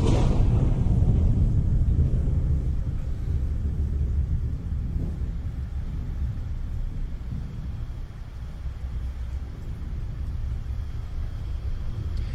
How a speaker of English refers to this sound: Now, we've all seen this video. I don't need to go through it, but it starts out with a storm.